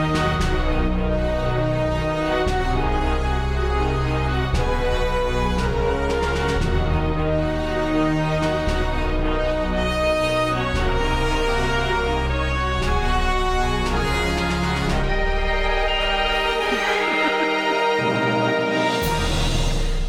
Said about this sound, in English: That's about time. The alarm. That was just the alarm, everybody. It was just the warning that we're nearing our time cap. Yeah, that was our outro music that we forgot to mute. Sorry.